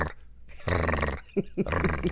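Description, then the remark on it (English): A person vocally mimics the sound a dog made when squeezed in someone's arms: a rough, buzzing snarl followed by a few short, squeezed yelps and grunts, fairly loud with no other talk. “And there, if he'd squeeze the dog even a little bit, the dog would go.”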